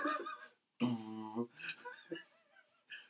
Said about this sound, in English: I think that was a bird.